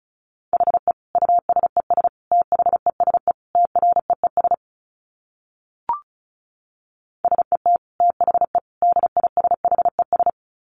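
Fast Morse code at about 35 words per minute: a steady mid-pitched tone keyed into rapid dits and dahs, in two bursts split by a pause with a single click.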